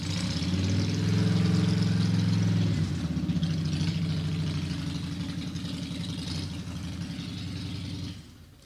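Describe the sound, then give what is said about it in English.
A Harley motorcycle engine idles with a deep, throbbing rumble, loud and steady at first, then settling slightly lower before cutting off near the end. No one speaks over it. “It's a roar.”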